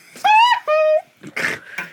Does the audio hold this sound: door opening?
no